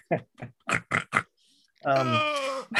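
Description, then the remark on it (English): A person imitates a badger up close: five quick grunting snorts, a brief pause, then a longer, wavering, squealing cry that sounds rather pig-like. “No, I was trying to make a badger noise.”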